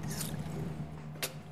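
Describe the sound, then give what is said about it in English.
A short splash of water poured into a glass for a cocktail, followed a second later by a brief clink, all over a steady low electrical hum with no talking. “Here's what I do for water.”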